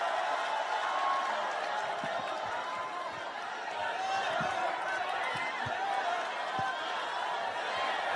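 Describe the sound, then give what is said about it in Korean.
A crowd of party members applauds in encouragement for a former Yangpyeong county council member about to speak, a dense, even wash of clapping with a scatter of voices and murmurs mixed in, holding at a fairly constant level for several seconds. “큰 응원과 격려의 박수 부탁드리겠습니다, 여러분.”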